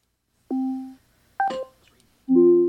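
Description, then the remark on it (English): A smart speaker (a Dot) places a phone call to an iPhone: a steady electronic tone, a quick bright warbling chime, then a louder sustained two-note tone, all clear with no voices. “All right, what we're going to do now is we're going to call his mobile phone, his iPhone, from my Dot, okay?”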